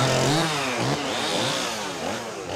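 A chainsaw roars steadily as it cuts down a tree, its engine pitch rising and falling in rough, buzzing waves, loud and continuous with no voices.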